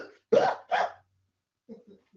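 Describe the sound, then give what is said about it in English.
Two sharp, forceful coughs close to the microphone in quick succession, apparently acted out by a speaker, followed by a pause and a few faint, low vocal sounds. “You know, you go to bed tonight and all of a sudden you start coughing.”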